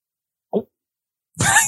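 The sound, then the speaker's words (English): A voice imitates sipping tea: a brief low vocal sound, a pause, then a louder, longer airy slurp with a rough, hissing edge. “Pretend you're taking a sip. Make a noise like you're taking a sip.”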